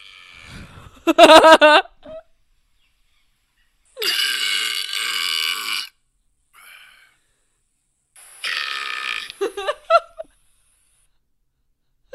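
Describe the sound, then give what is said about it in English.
Several very loud, long, raspy burps from an Australian man in a video, each lasting one to two seconds, separated by short silences, booming with a harsh, rumbling texture and no talking. “What is the loudest burp ever?”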